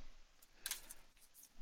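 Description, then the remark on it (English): Quiet papery rustling as three cards or papers are shuffled: a handful of quick, crisp flicks, one slightly louder burst near the start, and no voices. “One of them is a troll, just to let you know, and I'm going to shuffle them now.”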